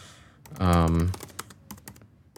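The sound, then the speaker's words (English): Quick, irregular computer keyboard clicks rattle away, pausing briefly while a loud sustained voiced hum or vocal sound cuts in, then the typing picks back up. “I love the clicking and clacking.”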